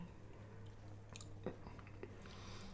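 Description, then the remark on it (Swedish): Wet chewing with soft lip smacks and a few brief crunchy clicks as someone tastes a dessert, steady and quiet over a faint low hum, with no talking. “Då smakar vi. Det här är ju lyxigt. Inte smaska i mikrofonen nu”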